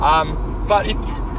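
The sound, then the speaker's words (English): A voice loudly imitates Camry cars hooning past, two quick revving bursts over a low, steady rumble. “Hooning Camrys.”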